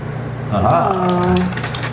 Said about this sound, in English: Okay, so roll two dice, roll four dice.